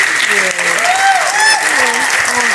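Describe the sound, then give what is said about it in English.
An audience at an evening panel event claps for the panelists in a dense, steady burst of applause that stays loud throughout, while a voice talks over the clapping. “Let's give another round of applause for our panelists,”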